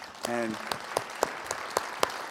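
Audience applause with a steady wash of clapping and several sharp, evenly spaced claps standing out, plus a brief tonal cheer or whoop near the start.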